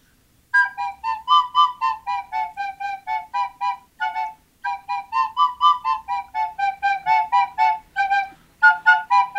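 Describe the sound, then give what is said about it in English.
A man plays a reedy, whistle-like melody through his nostrils on two small pipes, one in each nostril, with quick repeated notes rising and falling like a hymn tune, pausing briefly midway. No voices are heard. “he stuck these in his nose, and he played through his nostrils.”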